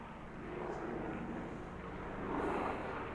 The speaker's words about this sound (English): Much like I'm hallucinating these helicopters. I think it's a group hallucination because I'm also experiencing this.